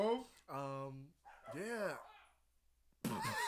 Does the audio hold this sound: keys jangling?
no